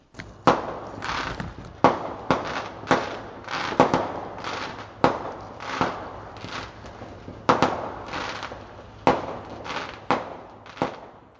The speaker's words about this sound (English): So there you have it, some fireworks from the glebe that I could hear near my house late tonight. Yeah, just a weird day here in Ottawa.